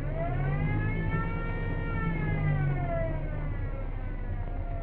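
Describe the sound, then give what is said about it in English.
A car klaxon horn, pressed by someone in the car, blares in one long, unbroken blast, its harsh buzzy tone wavering slightly in pitch. It is loud, with no voices. “That's the klaxon you're pressing.”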